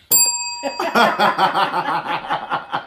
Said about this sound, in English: Both of y'all going to hit this bell at the same time.